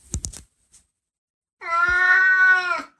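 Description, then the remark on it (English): A cat lets out one long, loud, drawn-out meow, preceded by a few brief rustling or tapping noises and a short pause of near silence. “What is your problem, you weird cat?”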